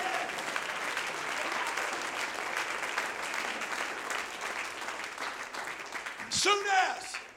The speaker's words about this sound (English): Oh, somebody needs to stand to your feet and clap your hands right now. Come on, somebody needs to stand to your feet and clap your hands unto the Lord and say, Lord, I'm going to present it to you today.